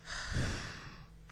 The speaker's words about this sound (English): We'll start with 5 deep breaths. During these 5 breaths, think of one thing you did well in our last lesson and one thing you want to do better today. Big, deep breathing. And out.